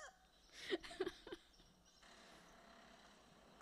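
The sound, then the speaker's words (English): A few short, sharp squawks of roosters crowing and chickens clucking on a farm sound in quick succession, then fade into a steady low rumble of background noise. “There's roosters dying all over.”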